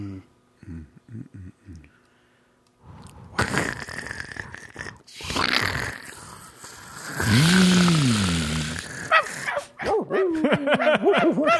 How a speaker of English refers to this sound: Something's wrong with my headphones. They're making dogs. 2 hours of dogs barking. In the distance, though. Not even that close up.